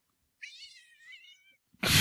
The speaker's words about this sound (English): How perfect. The cat.